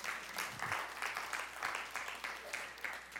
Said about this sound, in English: Don't be afraid to clap for Jesus today, because that's nothing to do with me. You're not clapping for me. You're clapping for the anointing of Jesus Christ, because without him, I'm a nothing.